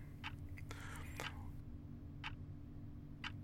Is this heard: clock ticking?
yes